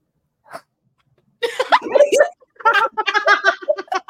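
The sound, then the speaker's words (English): A person imitates a tiger's chuff with a few breathy, puffing snorts of air, followed by a stretch of voiced, laughing chatter. “That's like the best tiger chuff.”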